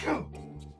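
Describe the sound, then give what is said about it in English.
A single sharp, explosive sneeze bursts out at the start, loud and breathy with a quick falling tail, then gives way to a low, steady background hum. “Bless you.”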